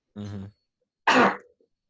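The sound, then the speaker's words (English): A single sneeze: a short voiced intake, a brief pause, then a loud, sharp, breathy burst that quickly fades. No one talks. “Bless you.”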